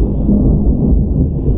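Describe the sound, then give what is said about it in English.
A deep, steady rumble of thunder rolls continuously for the whole stretch, heavy in the low end with no sharp crack and no voices. “Thank you, Thunder.”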